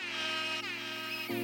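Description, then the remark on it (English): A loud, steady electric buzz from a front gate buzzer, harsh and full of overtones, holding for about a second and a half with a slight shift in tone near the end. “You just buzzed the front gate.”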